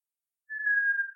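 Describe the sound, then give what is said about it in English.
A single sustained whistled note from a person, steady and slightly falling in pitch, starting abruptly after a moment of silence and holding for under a second, clear. “I can whistle, but what I'm going to say, anyone can whistle.”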